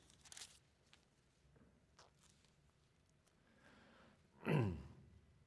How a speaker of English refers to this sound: I hear those pages rustling. That is a great sound to hear.